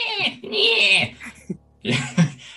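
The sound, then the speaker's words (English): A person's voice imitates a dolphin-like creature out of water with shrill, squeaky chirps and strained whines in a few short bursts, broken by brief pauses. “Because I can't do a dolphin noise, it makes a weird sound because it's out of water.”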